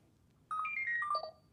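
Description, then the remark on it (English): A toy robot plays a beeping program: a quick run of electronic beeps, several bright tones stepping up and then down in pitch, loud and alone for under a second, with no talking. “Now I'm just going to get beeping.”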